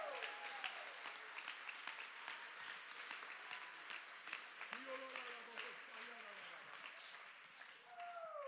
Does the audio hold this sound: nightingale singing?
no